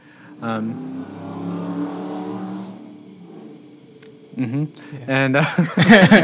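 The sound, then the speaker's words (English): A car drives by, its engine hum swelling and fading over a couple of seconds at moderate loudness, followed by people talking and laughing. “Hello, car.”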